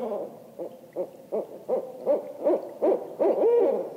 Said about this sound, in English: Have you ever heard a barred owl? Did you know what barred owl babies sound like? Yeah, they're talking now. These are barred owl families. The babies make very high-pitched squeals as they talk to their parents